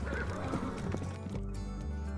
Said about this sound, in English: A messenger on a dusty horse skidded to a stop in the small town market.